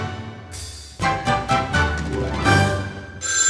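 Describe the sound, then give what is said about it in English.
A phone ringtone plays a loud, busy electronic melody with rhythmic repeated notes, filling the whole stretch, with no one talking over it; the call comes from an unrecognized number. “I don't like that death phone. It's okay. I don't know who this is. I don't recognize this number.”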